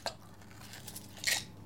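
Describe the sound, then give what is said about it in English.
A large ice cube for a cocktail clinks against a glass, with one brief sharp tap at the start and a brighter, longer rattling clink about a second later, both fairly quiet, with no voices. “If you guys take one goddamn thing away from this podcast, you do one big-ass ice cube.”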